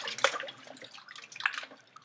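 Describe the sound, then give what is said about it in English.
Meat being massaged in a bowl of water with lemon juice and a tablespoon of salt: wet sloshing and squelching in irregular bursts, with two sharper splashes standing out and no voices. “And I'm going to be massaging and massaging. Massage that meat.”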